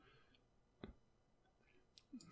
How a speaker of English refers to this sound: I'll give it to you because it's celery breaking. Is it celery? It is celery.